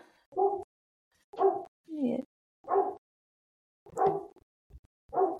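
A dog barks repeatedly, six short, sharp woofs spaced about a second apart with brief silences between them, moderately loud, with no one talking.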